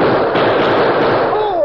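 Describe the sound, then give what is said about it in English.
A loud, dense volley of gunshots in a radio drama crackles in quick succession with a thin, band-limited old-radio tone, ending with a descending whine like a ricochet. “Hold your fire, Lop.”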